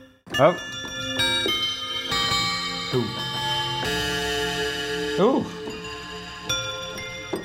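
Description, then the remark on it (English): A synthesizer plays layered, ringing bell-like chimes with steady ticking, the tones sustaining and overlapping throughout, while a voice briefly exclaims in delight a few times over the sound. “I've decided to play Grandfather's Room of Clocks 1.”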